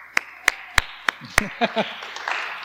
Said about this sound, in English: You can clap.